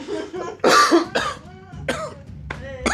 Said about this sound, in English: Excuse me. I was coughing so hard, my gosh.